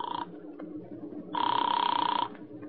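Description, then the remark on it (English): A telephone rings twice with a bright electronic trill, first a brief clipped burst and then a longer, steady ring, over a low background murmur, as a call is placed to a newspaper in Chicago. “I put in a call to Chicago and got the paper on the phone.”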